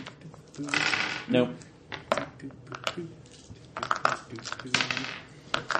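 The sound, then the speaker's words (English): Several dice clatter and rattle across a hard surface in irregular bursts of sharp, bright clicks as everyone rolls for a cutting observation in a tabletop game, with murmured voices underneath. “Everybody roll a cutting observation.”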